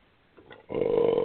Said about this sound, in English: Ooh, scoozes. My apologies. Ye old coffee burp.